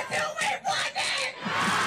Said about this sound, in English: And it sounds like the whole crowd is women, doesn't it? You know. It's frightening. I mean, it sends chills through my spine sometimes when I hear that.